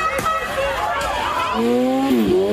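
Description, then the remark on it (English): A motorcycle engine revs hard with tires squealing in a burnout on a homeowner's lawn in a suburb of Milwaukee during protests, the loud whine climbing and dipping in pitch over a couple of seconds while faint crowd noise murmurs beneath. “This guy revved his motorcycle and did a burnout and drove on a homeowner's lawn.”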